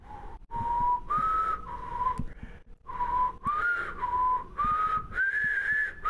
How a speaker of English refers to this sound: You suck at whistling.